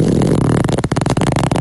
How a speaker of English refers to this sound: How do you not like a fart sound? It sounds like a zipper.